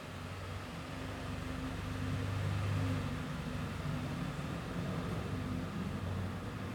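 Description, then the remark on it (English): A car engine hums steadily with broad road noise, swelling a little midway as the car drives past, then settling back to a constant rumble. No one speaks. “It's unbelievable how many of this car is.”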